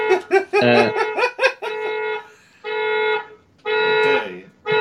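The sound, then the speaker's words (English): A car alarm outside a window blares in loud electronic bursts: rapid chirping tones at first, then long sustained honks repeating with short gaps, with no talking over it. “do you hear the car alarm?”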